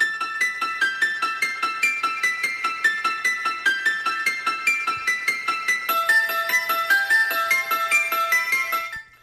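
The theme music from the horror film The Exorcist: a bright, bell-like piano motif repeats in a steady, hypnotic pattern, with a higher chiming line joining near the end, clear and fairly loud with no voices.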